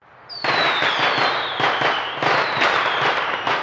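fireworks sound effect

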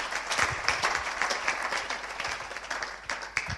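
audience applauding

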